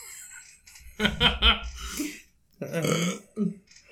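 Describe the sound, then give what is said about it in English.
Two loud burps, the first a rough stuttering belch of several quick pulses, followed after a short pause by a longer, throatier one that trails off. “I would rather you be farting and it smell raunchy than you burping.”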